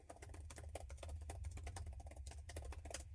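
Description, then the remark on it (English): Rapid, uneven clacking of keys on a computer keyboard, a steady stream of crisp clicks over a low background hum, with no voices. “We don't need no stinking typey foley here.”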